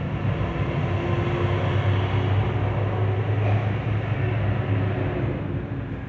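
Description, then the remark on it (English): An airplane flying overhead makes a continuous, steady rumbling drone with a low humming engine tone. The sound holds at an even loudness throughout, with no voices. “There's an airplane.”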